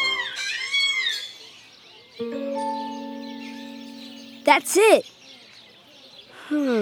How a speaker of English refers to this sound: This is the African gray parrot.